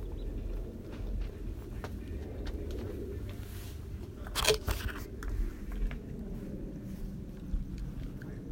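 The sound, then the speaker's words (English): Dr. Baker, an honorary kitty, eats wet food out of a little kitty can: soft, irregular smacking and licking clicks with a brief louder crunchy scrape midway, all over a steady low rumble. “Baker gently eating out of a little kitty can of food.”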